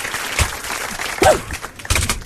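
Tap shoes shuffling in quick, irregular bursts of crisp clicking taps, with a brief rising-and-falling vocal whoop partway through.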